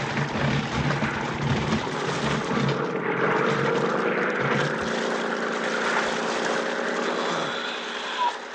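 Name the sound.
airplane engine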